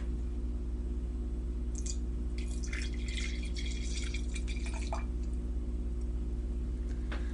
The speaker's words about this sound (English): So I'm going to pour a glass and then I'll share some of my favorite places in Scotland.